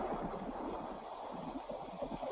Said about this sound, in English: I can hear the rain.